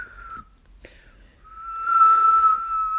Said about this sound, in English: But that was good whistling for me, but I was genuinely just... I literally... just can see me. Holding an imaginary bowl and fork, like...